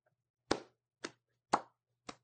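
A slow clap: four sharp, evenly spaced hand claps about half a second apart, each a crisp smack with a short ring-off and nothing else between.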